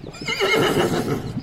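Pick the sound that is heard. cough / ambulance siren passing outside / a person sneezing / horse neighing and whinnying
horse neighing and whinnying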